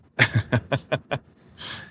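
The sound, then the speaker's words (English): A voice lets out a quick run of short, clipped vocal bursts, then a loud, breathy, drawn-in gasp, theatrical and exaggerated rather than startled. “Gasp.”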